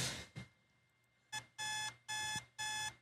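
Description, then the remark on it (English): A phone alarm clock rings with sharp, high electronic beeps in four quick, evenly spaced bursts, loud, after a brief quiet moment with faint background noise. “My alarm, like, dude, pisses me off.”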